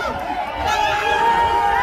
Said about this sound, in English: There's the egg thrower. Yeah, they're booing at the guy throwing the egg.